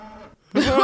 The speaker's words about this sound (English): It was so aggressive. It was so aggressive. It was so aggressive. Like, that's an aggressive fucking moo. That's a... Like a moo that says, bitch, why are you lying?